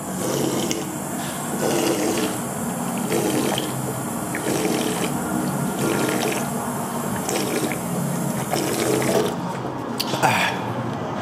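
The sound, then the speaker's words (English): Water runs steadily from a faucet, a continuous rushing stream with slight surges throughout and no voices. “One, drink tap water.”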